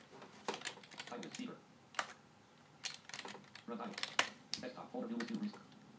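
Clattery typing on an old computer keyboard: quick keystrokes in irregular bursts and short runs, separated by brief pauses, at a moderate level.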